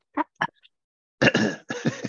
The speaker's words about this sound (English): I had to clear my throat. Everybody cough.